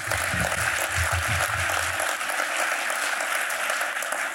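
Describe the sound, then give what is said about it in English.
A crowd applauds steadily, a dense wash of many hands clapping at an even loudness throughout, with a low rumble of voices underneath during the first couple of seconds. “And those of you who didn't applaud are all hiding the whistleblower.”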